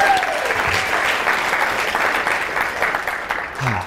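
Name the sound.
audience round of applause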